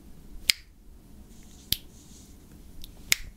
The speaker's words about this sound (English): It's not making any noise. Oh, it's making noise. Whoa. Sounds like snapping.